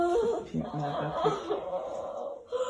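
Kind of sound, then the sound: animal, dog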